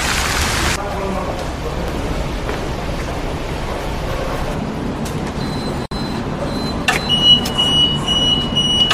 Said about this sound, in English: And lots of traffic here. But I like it, it's a good vibe.